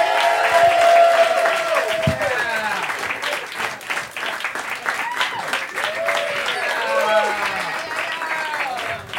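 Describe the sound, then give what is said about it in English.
An audience applauds steadily and loudly for several seconds to welcome a show's guests, dense clapping mixed with whoops and cheering voices rising and falling over it. “Keep your applause going, everybody,”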